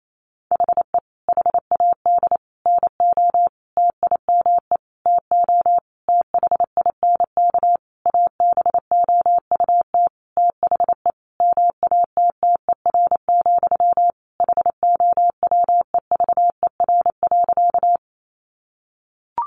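Fast Morse code keyed as a single steady mid-pitched tone, quick dots and dashes in irregular bursts with brief gaps, running continuously at about 28 words per minute with no voices.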